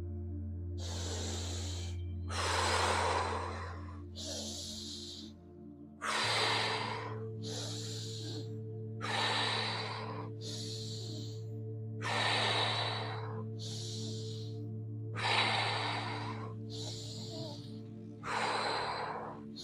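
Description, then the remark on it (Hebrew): Rapid, forceful nasal tummo breathing in a steady rhythm, about a dozen sharp hissing inhales and exhales, over a low continuous hum. “Nasal TUMMO BREATHING”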